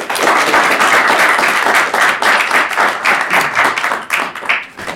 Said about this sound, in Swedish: i övrigt så vill jag gärna ge en applåd och välkomnar Sameh hit idag